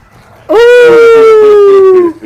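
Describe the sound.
A person imitates a wolf howl with one long, loud, sustained tone that slowly falls in pitch for about a second and a half, heard alone with no talking.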